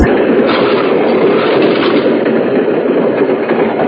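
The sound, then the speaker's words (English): A train rumbles steadily along the rails, a loud, continuous roar filled with rapid, uneven clatter, as if heard from inside a moving carriage. No one speaks. “It's a shame there's hardly anybody on this train”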